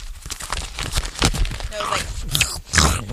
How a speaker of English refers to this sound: It all happened with a bag of Funyuns. You got all crazy with me, man, just because I was munching on Funyuns. You were munching on Funyuns on the air.